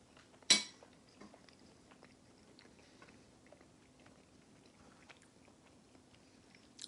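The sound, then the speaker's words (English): A sharp bite at the start followed by several seconds of soft, wet chewing of a combination sausage microwave pizza bowl with ham, with faint intermittent mouth sounds and no talking. “So once again, you get that chewiness of the crust.”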